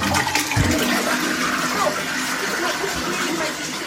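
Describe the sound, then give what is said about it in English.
A toilet flushes, a loud continuous rush and swirl of water that stays strong for a few seconds before easing slightly at the end. “1 second, do the flush.”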